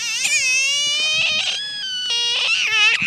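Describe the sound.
A man, an animal impressionist, imitates a frog call with his voice: a fairly loud series of high, squeaky, warbling tones that slide and step in pitch across several short bursts, with no talking.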